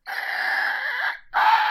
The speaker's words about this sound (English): As you disturb the bones, looking through it, you hear a loud shriek.